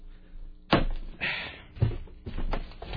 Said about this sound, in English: All right, here we go. I don't have any scissors. No, I got it. This is really exciting. I'm opening a box on the air.